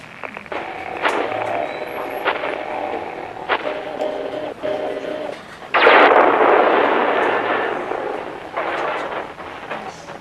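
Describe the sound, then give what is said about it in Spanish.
A gigantic walking machine with two metal legs and a spherical top, about half a mile away, firing its weapon: a droning mechanical hum with sharp metallic cracks, then a massive blast at about six seconds that roars and slowly fades, with further heavy bursts after. No voices. “Dios mío, esa cosa disparó y nos mató.”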